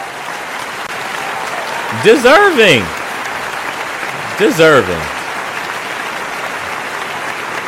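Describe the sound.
A steady wash of clapping applause runs throughout at an even, moderate level, with a voice briefly speaking over it twice. The applause is a round of applause for the sturdy boy and thorough John of the week.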